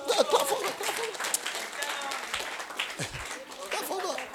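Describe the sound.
An audience claps for God in a dense, steady burst of applause, with several voices calling and cheering over it throughout the few seconds.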